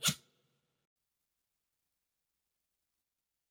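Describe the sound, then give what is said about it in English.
A dog with allergies gives a single quick sneeze, a short sharp burst of breath at the very start, fairly quiet, then silence for the rest of the moment. “I don't know if you can hear my dog sneezing next to me.”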